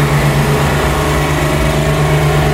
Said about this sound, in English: What is this noise? Oh, it's a generator. lately this neighborhood has been one of the noisiest places on the planet. Listen to that.